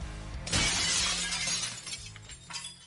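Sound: glass shattering sound effect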